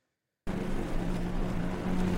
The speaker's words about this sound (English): Would you listen to this whilst you were, would you have this in your ears, like playing in the background? The lawnmower music? Yeah.